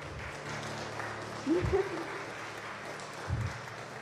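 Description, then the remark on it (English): An audience applauds steadily throughout, a dense, even patter of many hands clapping, with a couple of brief voiced shouts or cheers rising above it, applauding a mother standing up in the audience. “Can we have a round of applause for my mom over there?”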